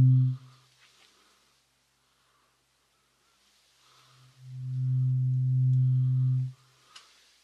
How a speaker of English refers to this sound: We're going to do the same thing. We're going to try the different tones in the different ears. Same as before. Point whichever direction you think you hear them.